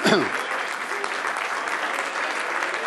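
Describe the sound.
An audience breaks into steady, dense applause, many hands clapping together in a continuous wash of sound that stays loud from start to finish, with faint voices mixed in.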